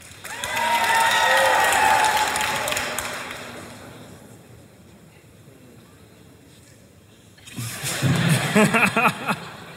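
An audience cheers and whoops loudly to vote on who was telling the truth, then the noise fades to a quieter murmur before a second burst of cheering and clapping rises near the end.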